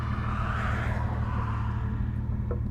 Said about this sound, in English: But you can hear how fast the cars are going on this road, and so if he, you know, calves are skittish, and if he just runs the wrong way, he could get hit, so.